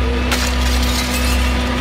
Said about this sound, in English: Lighting up Nepean Street, this property started to burn. Fire crews forced to break the front windows to get the water in.